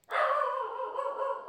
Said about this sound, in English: Rufus, it's okay. You don't need to bark.